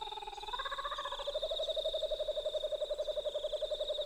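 A single kookaburra calls at sunrise in Australia, its loud laugh building into a rapid, rhythmic cackle of repeated hooting notes that runs steadily for several seconds with no other voices.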